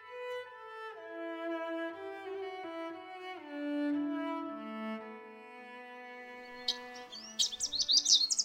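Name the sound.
birds singing in trees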